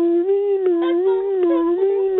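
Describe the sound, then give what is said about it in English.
A voice imitates an ambulance passing by, as a sound effect for a scene: one continuous, fairly loud wailing hum that holds a mid pitch, rising and dipping only slightly over two seconds, with no talking. “Okay, can we have very, very, very, very quietly in the background, can we have an ambulance passing by, please?”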